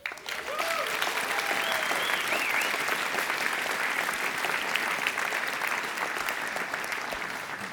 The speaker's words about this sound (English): And I think for that, the entire Solana community deserves a big, big round of applause.